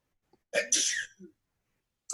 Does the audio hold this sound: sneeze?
yes